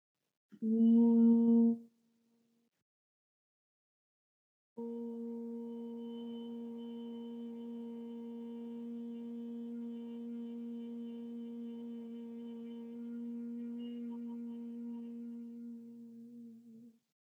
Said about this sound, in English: And so then I'm going to close off my ears, and I'll do the humming sound. I'll just do it a couple or three times.